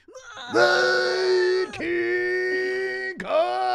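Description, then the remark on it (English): A person imitates an anime-style power-up scream like Goku from Dragon Ball Z: a loud, strained, sustained yell held for several seconds, with two brief breaths that break it before it surges on again. “Because we need this fight to last like six episodes, and Goku will just sit there and scream.”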